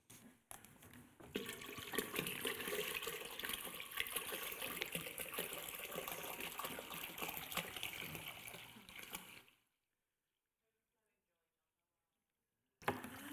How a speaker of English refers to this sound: So let me pour the last one in and finish with this.